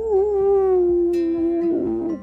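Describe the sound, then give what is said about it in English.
A worried puppy howls in one long, sustained, slightly wavering cry that breaks into whimpering yelps at the end, loud with no talking. “a very worried puppy indeed.”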